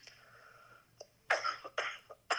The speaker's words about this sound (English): Sorry for this. No worries. I apologize for all the coughing and it was the bad voice.